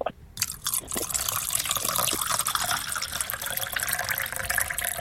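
Liquid pours steadily into a container up close, a continuous splashing, gurgling stream that starts abruptly after a brief pause and keeps running at an even, fairly loud level.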